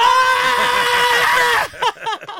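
Loud, high-pitched screaming from people holds steady for about a second and a half, then breaks off into a few short vocal bursts and talk.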